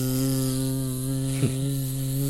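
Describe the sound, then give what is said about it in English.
A steady, low electrical buzz drones on without pause, thick with harmonic overtones, broken only by one brief soft thump midway through. “Ominous buzzing.”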